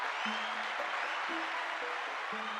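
An audience applauds in a steady, dense wash of clapping that lasts the whole clip, with brief low tonal hums sounding faintly underneath.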